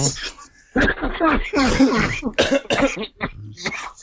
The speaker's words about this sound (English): Oh, see, that sounds dry. That's a dry cough, dude. That's a dry cough.